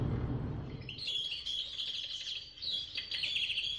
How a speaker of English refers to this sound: I should probably mention before I forget, by the way, that Grandma has some birds.